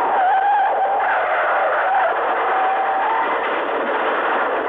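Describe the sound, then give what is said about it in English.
A car skids with a long, loud, continuous tire screech that wavers in pitch for several seconds, sounding muffled and narrow as if heard over a phone line, while the caller drives his car towards a restaurant. No clear impact follows. “In an accident? Are you all right?”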